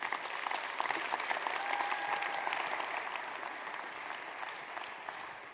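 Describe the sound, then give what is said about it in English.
An audience applauds steadily for several seconds, a dense, even patter of many hands clapping at a fairly loud, consistent level with no voices rising above it. “Would you give him a round of applause as he comes out?”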